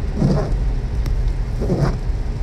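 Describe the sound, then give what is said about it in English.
Car windshield wipers sweep twice at a steady pace, each stroke a soft swish, over the constant low rumble of a vehicle interior in the rain on a rainy Friday before Christmas. “As you can hear my windshield wipers, it's our last day of work.”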